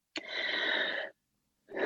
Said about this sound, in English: compromised breathing. I can do an example for you of a deep breath.